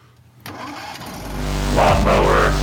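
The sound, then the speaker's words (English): After a brief quiet moment, a lawnmower engine cranks and catches, its low mechanical rumble building into a louder, rough revving roar that keeps rising through the end. “hit the button for a little tiny bit of lawnmower talk.”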